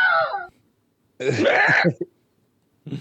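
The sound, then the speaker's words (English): A voice makes strained, squeaky vocal bursts imitating a stifled scream: a short high squeak, a longer tense strangled cry after a pause, then the start of another. Fairly loud, no words. “He continued attempting to scream, but was only able to produce occasional squeaks.”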